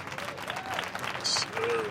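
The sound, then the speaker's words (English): A short burst of crowd applause for a guest, dense and steady clapping with a bright whoop or cheer rising briefly above it, filling the whole couple of seconds at moderate loudness. “Let's get a round of applause for him.”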